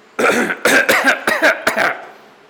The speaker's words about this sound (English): You should cough.